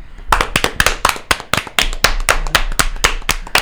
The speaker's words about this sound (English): So there you go. There's your round of applause.